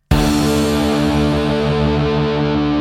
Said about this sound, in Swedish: men vi rundar av och återkommer efter en liten fin musik. Trudelutt, hej så länge.